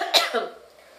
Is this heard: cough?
yes